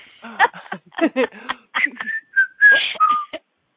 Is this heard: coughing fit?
no